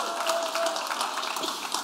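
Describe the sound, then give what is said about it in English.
A church audience claps for Jesus, steadily and densely, a continuous wash of many hands at an even, fairly loud level with no voices standing out. “Come on, if you're going to clap, clap for Jesus and make it loud and intentional.”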